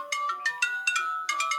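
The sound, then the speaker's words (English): A phone ringtone plays alone, a bright electronic melody of several quick tonal notes in bursts, steady in loudness, with no talking. “Wait, I think my phone is ringing.”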